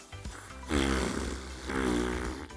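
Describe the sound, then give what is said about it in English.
Two loud, buzzy fart noises made by blowing with the mouth into the elbow, each lasting under a second with a brief pause between, with no talking. “We just want those farts you make when you blow into your elbows, don't we?”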